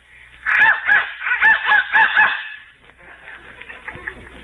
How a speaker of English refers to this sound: Must be broken. Maybe you have to blow it harder. Who's blowing that darn whistle in here? Well, I'm blowing it, but... You heard it blow? Yeah.